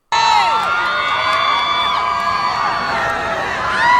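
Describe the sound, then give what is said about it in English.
In a video, a large crowd cheers and shouts for a man dressed up as Scooby-Doo, a loud, dense roar full of high-pitched screams and whoops that rise and fall throughout. “So this is, I'm assuming this whole crowd is there to see other people as well, but apparently they're having a really good time with the guy who's dressed up as Scooby-Doo at the moment, so...”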